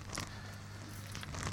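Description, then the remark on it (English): Soft crinkling of a bit of paper being handled for writing on, with a few brief rustling bursts near the start and toward the end over a low steady hum. No one speaks. “On this bit of paper.”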